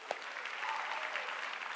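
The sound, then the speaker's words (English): Steady applause from a church audience, clapping for the church's 14 years of support for a missionary to Uganda: a dense wash of many hands clapping at an even level for a couple of seconds, with no voices standing out. “Can we clap for that?”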